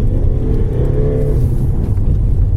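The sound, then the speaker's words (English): A car's engine drones steadily at low pitch while tyres rumble and patter over the very battered, cracked concrete surface of the old Brooklands track, with lots of loose gravel, producing continuous loud road noise with no speech. “Driving on the very battered concrete surface with lots of cracks in it and lots of loose gravel.”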